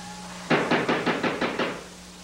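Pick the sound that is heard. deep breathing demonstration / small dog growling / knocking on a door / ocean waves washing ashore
knocking on a door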